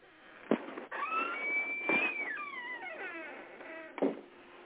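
A long, high-pitched creaking squeak like a squeaky door, wavering and sliding downward in pitch over several seconds, framed by a few dull knocks at the start and end.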